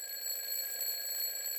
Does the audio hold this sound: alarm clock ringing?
yes